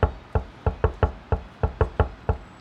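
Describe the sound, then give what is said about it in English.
A man knocks on a door in an alley: roughly ten solid knocks in a quick, uneven pattern, some spaced apart and others in close pairs, with no voices. “He's knocking on the door.”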